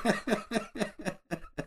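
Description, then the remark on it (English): A rapid fit of coughing, about seven harsh bursts in quick, even succession with a brief gap near the end, and no talking. “Now I'm coughing.”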